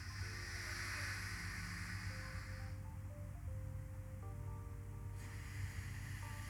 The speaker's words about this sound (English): And then what I do is I take my pinky off, breathe all the way in through that nostril, hold it, breathe out with the next nostril, and it's called alternative nostril breathing. So you do, and then you go with it again with the next one.